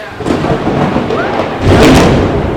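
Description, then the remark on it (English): A low, sustained rumble of thunder rolls through the whole stretch, swelling louder near the end before holding steady, with no one speaking over it. “Okay, Thunder. We get it.”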